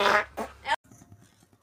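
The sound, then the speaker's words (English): A loud, brassy fart sound effect in three sputtering bursts in a spoof advertisement for Processed Meat Farts, cut off abruptly and followed by a faint, low rumbling tail. “So meaty and farty too.”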